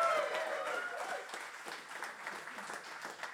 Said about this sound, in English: Can I please get a round of applause for the man with the index finger